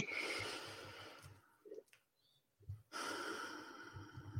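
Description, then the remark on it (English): Slow, deep breathing during a pause for breathing: a long, airy breath, a quiet pause of over a second, then another drawn-out breath of similar length. No one speaks. “Pausing and breathing.”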